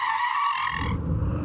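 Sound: car tires skidding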